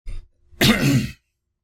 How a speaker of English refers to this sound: I'm going to clear my throat before I go to Hudson Taylor.